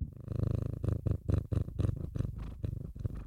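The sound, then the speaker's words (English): A female pet cat purrs, a steady, rhythmic rumble pulsing in quick regular cycles for a few seconds, with no one talking over it. “Do you want to hear a purr?”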